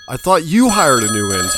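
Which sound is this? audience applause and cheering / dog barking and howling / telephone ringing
telephone ringing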